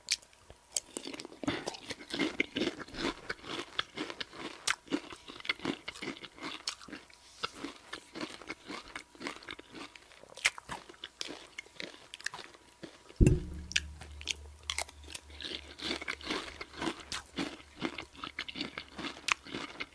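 Close-miked crunching and chewing of cereal, a steady stream of crisp, irregular crunches and wet chewing with no talking, plus a low hum that sets in partway through.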